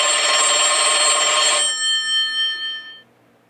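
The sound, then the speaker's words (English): An old-style telephone bell rings loudly and steadily for over a second, then its metallic tone rings out and fades away, with no talking. “Did that phone just...”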